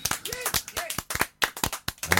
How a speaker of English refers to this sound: I must say hello to them. We've given them a round of applause.